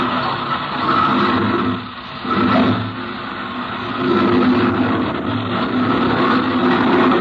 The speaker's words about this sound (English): Captain Bellows climbed into the cockpit, and the lieutenant spun the propeller.